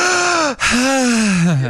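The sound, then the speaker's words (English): A loud voiced gasp, a sharp intake followed after a brief break by a longer, falling, strained breathy vocalization, with no speech around it. “You can still breathe.”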